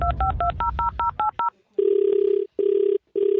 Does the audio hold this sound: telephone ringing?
yes